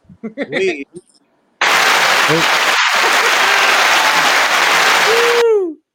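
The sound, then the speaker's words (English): A loud burst of applause sound effect cuts in abruptly after a brief stretch of talking, roars steadily for about four seconds, then stops dead, leaving a short descending whistle-like tone. “your sound effects are loud as hell. Also, it could have either been applause or loudly running water.”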